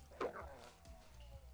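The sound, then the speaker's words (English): A dog in a bathroom whimpers: a short, sharp high-pitched cry followed by a few softer whining sounds, with low background rumble and no talking. “What exactly is the point of the dog in the bathroom?”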